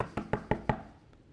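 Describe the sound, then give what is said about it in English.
Four heavy, evenly spaced knocks bang on a door in quick succession, loud, with a faint echo trailing off afterward and no voices. “There's somebody banging on the door.”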